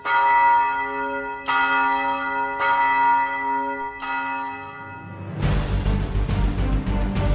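Large bells toll four times at a slow, uneven pace, each strike ringing out with a long sustained hum, before a loud, deep rumbling roar abruptly washes over them.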